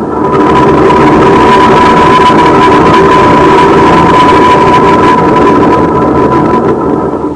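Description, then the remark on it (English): Loud, steady roar of large idling bus engines at a bus terminal, a continuous droning hum with a pronounced tonal whine, filling the whole stretch without pause or voices. “The booths were too far from the field to pick up any motor sounds.”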